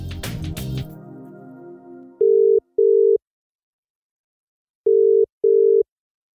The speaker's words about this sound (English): Hundreds of people have turned their radios off once they discovered where the noise of a ringing phone was coming from.